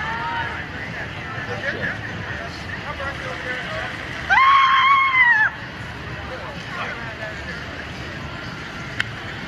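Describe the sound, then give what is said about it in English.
A single loud, high-pitched scream lasting about a second, from a behind-the-scenes look at the Barbie movie, rises out of a steady noisy background of crowd babble and rumble, then cuts off abruptly. “It's the scream for me.”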